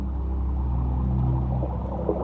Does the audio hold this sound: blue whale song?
yes